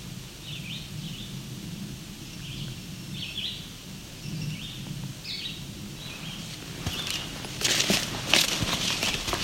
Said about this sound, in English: Red-eyed vireo, of course, as our background bird.